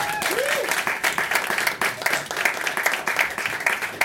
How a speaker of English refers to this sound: Please, start clapping now for my friend, your friend, everybody's friend